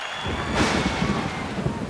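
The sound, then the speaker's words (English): Steady rain hisses across the whole recording while a low thunder rumble swells partway through, dense and fairly loud, with no voices present. “The rain is back.”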